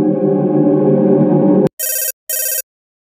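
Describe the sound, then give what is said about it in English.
A mobile phone rings loudly: a sustained buzzing tone gives way to two short, bright, shrill ring bursts with a brief gap between them, then silence. “The sound of my phone startled me.”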